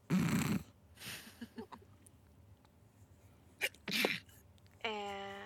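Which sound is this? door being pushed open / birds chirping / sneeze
sneeze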